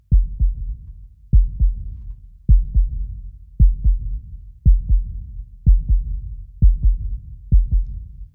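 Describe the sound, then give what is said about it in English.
A deep, muffled heartbeat thumps steadily in paired lub-dub beats, about one pair per second, loud with a low rumbling resonance and no voices. “People say that heartbeat is a little creepy, and I don't disagree.”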